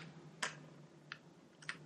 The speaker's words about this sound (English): I'm just fidgeting with my pens. I apologize.